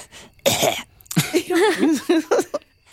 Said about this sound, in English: She coughs in my ear.